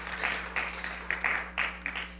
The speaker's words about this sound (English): Before that, isn't it great to hear the choir again? You guys did a great job. I'm going to give you another round of applause. Thank you.